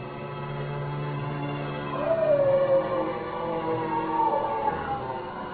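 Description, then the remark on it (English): A dog howls in long, wavering tones that rise and fall, the cry swelling midway and carrying on steadily without pause over a dull, constant background, as the dog attacks a man. “He's gone for the dog.”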